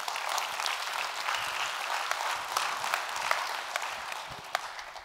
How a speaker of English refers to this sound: And he went and he got baptized. You can clap for that.